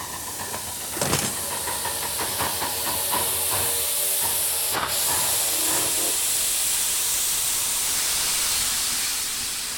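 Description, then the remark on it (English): A steam train hisses loudly and steadily, a broad rushing blast of steam with a few sharp clanks and metallic knocks near the start, continuing alone without any voices. “Come on up aboard the train!”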